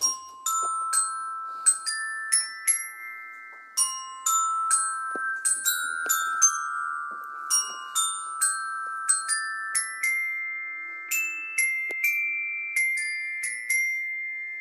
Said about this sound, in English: Is this the bit where you play your xylophone now? Yeah, exactly. It is.